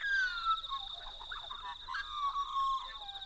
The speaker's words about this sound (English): That beautiful fluting sound is the Australian magpie, a large bird, black and white, not quite as big as a crow.